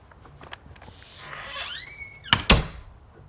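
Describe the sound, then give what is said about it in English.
A door swings with a rising, squealing hinge creak, then closes with two quick, solid thumps, over a quiet background with no talking. “You don't lock your door.”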